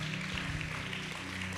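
An audience claps in a steady, dense burst of applause, a continuous crackling wash of many hands at even loudness, with no voices over it.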